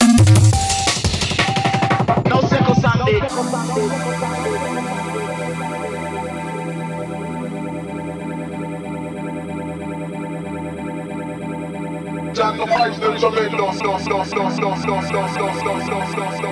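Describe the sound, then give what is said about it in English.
An electronic music track plays loud and continuous, opening with a dense, distorted burst before settling into layered sustained tones with a steady pulse; brighter, busier textures return near the end. “Wicked tune this.”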